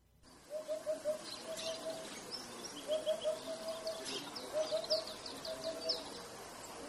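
A hoopoe calls in soft, hollow, low-pitched triplets of 'oop-oop-oop' repeated about four times, while other birds chirp and twitter higher up in the background.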